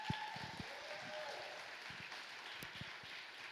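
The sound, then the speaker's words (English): A crowd applauds steadily as a couple comes to the platform, a dense wash of many hands clapping at a fairly even level throughout, with a few sharper individual claps standing out and some faint voices mixed underneath. “And would you just give them a hand clap as they come?”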